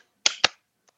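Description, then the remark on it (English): Two sharp, loud hand claps in quick succession, then a much fainter third after a pause, clapping the opening rhythm of Happy Birthday for a listener to guess the song. No one speaks. “Well, I'm going to clap something for you.”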